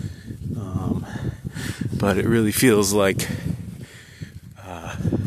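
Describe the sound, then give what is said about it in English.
A steady low rumble of cold wind buffets the microphone outdoors on a beautiful day, lingering beneath a man speaking and never fully dropping away between his words. “It's windy, so I apologize for the noise.”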